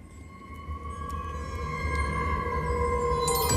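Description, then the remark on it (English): Eerie, mysterious horror-style theme music, played by the producer as backing for a story about a Proton Saga breaking down on the Karak Highway: long sustained tones hanging over a low rumbling drone, slowly growing louder, with no voices. “do you have a kind of a suitable mysterious horror-like theme?”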